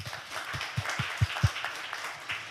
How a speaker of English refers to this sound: A big round of applause.